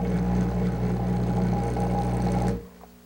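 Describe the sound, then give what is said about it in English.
A dental lab vibrator gives off a loud, steady low-pitched mechanical buzz that runs without a break for about two and a half seconds, then switches off, leaving near silence; it is used to settle freshly spatulated investment material down into one place. “So just like the vacuum investing, I will use a vibrator in order to bring all this investment down in here, accumulated in one place.”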